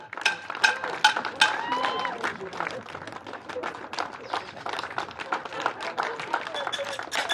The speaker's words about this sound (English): A familiar sound from our Thursday nights during the pandemic, the clap for carers at 8pm.